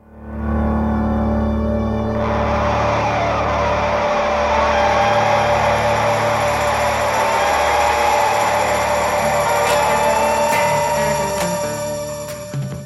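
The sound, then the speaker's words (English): A guitar echo in the right channel at the start of a song feeds back on itself, building into a loud, sustained oscillating drone with steady ringing tones and a harsh, buzzing, engine-like edge that swells and persists without any voices. “The guitar in the right channel begins to oscillate. That's when the echo feeds back on itself.”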